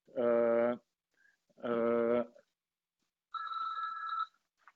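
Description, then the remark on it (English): A home landline phone rings with two loud, buzzy electronic bursts separated by a short pause, followed by a brighter, higher-pitched ring tone. No one is talking. “So hold on a second, home phone is ringing.”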